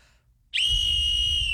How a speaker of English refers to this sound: You got ripped off, man. What do you mean? That's a whistle. That's just a whistle. That's the world's loudest whistle. No, it says that's it. That's a whistle. Uh-uh, man.